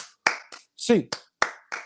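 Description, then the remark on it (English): A quick rhythmic run of sharp hand claps, an eight-count group clap counted one to eight, about six claps in under two seconds, evenly spaced, with a short voiced shout breaking in midway through. “And as per usual, we're going to end this episode as we like to with an 8 clap, baby.”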